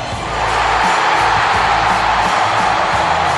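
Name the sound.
baseball stadium crowd cheering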